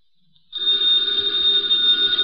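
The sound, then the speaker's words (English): An old telephone bell in Nero Wolfe's office bursts into a loud, continuous ring after a brief moment of near silence, its bright metallic clatter sustained steadily. “Ladies and gentlemen, the ringing of that phone bell means adventure.”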